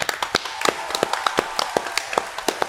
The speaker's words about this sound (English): So let's clap it up for these guys.